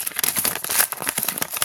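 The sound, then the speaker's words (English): Crisp paper being torn and crinkled as a mailed envelope holding paper tickets is ripped open, a steady run of scratchy rustling bursts with no voices. “I thought I'm going to open them right up right here on the podcast. A little ASMR.”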